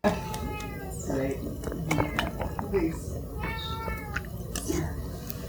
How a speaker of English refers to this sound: I wonder if you could hear Caboose meowing in the background there.